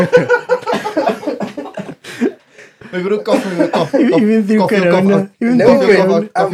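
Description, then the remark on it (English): A person coughs several times into the microphone, harsh bursts mixed with voiced, laughing-like sounds, followed by more vocal noises without clear words. “I didn't want to cough because making such a profound point”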